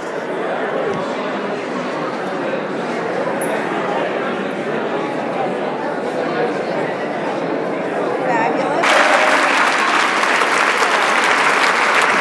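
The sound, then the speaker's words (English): A large concert hall audience, all standing, applauds steadily at the end of Berlioz's Symphonie Fantastique played by the LA Phil under Gustavo Dudamel: a dense wash of clapping with murmured crowd noise underneath, then the applause swells louder and brighter toward the end like a standing ovation. “This is the applause at the end of Berlioz Symphony Fantastique, played by the LA Phil, conducted by Gustavo Dudamel.”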